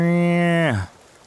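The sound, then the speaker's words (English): A single drawn-out, nasal bleat from a tipped-over doe bleat can call, used while deer hunting to call back a buck, holding a steady harmonic pitch before sliding downward and cutting off, with no other sounds around it. “I lost him, but I had one of those little can calls, that little doe bleat can that if you tip over, it makes that sound.”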